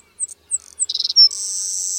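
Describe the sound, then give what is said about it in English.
A male savannah sparrow's thin, high song: a few sharp introductory chips, a short buzzy trill, then a long insect-like buzz that fills the final second. It is clear, with no talking. “Recently, researchers tracked the lifespans of male savannah sparrows over 6 years using only recordings that captured individuals' uniquely identifiable songs.”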